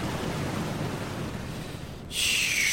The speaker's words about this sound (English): Splash. You awaken submerged in an underground lake. Checking yourself, nothing seems to be broken.